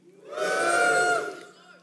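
A church audience cheers and whoops together for the Bible in a loud burst that swells over about a second, then fades out.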